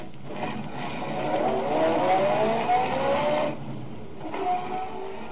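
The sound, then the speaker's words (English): A car engine revs and pulls away as the driver heads down to Walnut Street, its pitch climbing steadily as it accelerates, then dropping off before a shorter second burst of revving. No one speaks. “I got in my car, drove down to Walnut Street.”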